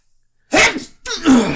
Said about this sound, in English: A sneeze. Sorry, guys. Sorry.